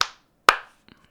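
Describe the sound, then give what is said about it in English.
Two sharp, loud hand claps about half a second apart, each ringing briefly, with a couple of faint small taps trailing afterward and no talking. “Sorry if that clap was too loud.”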